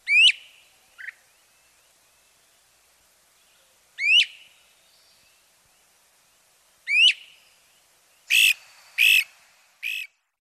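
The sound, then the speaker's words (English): A great crested flycatcher gives loud, rising whistled 'wheep' calls, spaced a few seconds apart, then a quick run of three harsher, burry notes near the end. It sounds clear, with no talking. “But it really makes its presence known by its distinctive call.”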